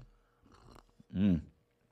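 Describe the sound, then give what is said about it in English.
Soft slurping of hot tea from a mug, followed by a brief, louder voiced exhale of satisfaction, then quiet. “Slurp that tea.”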